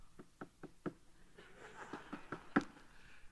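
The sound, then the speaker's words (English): A rhythmic series of knocks on the wooden door of a house during door-to-door soul winning, four steady raps followed by a looser run of taps that ends in one sharper, louder knock, with faint background murmur. “So I go to the house, and I have this real spiritual knock.”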